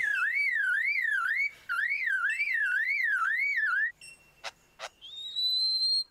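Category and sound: vehicle, car alarm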